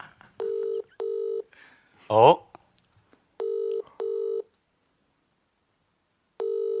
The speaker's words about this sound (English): That phone near the microphone.